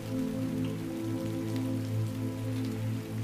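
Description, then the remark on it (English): Steady rain patters at night on a cabin among pine trees, a continuous, even wash of drops with a low, constant hum beneath it and no voices. “Your eyes close, and you ride on the sound waves of the rain as they usher you to sleep.”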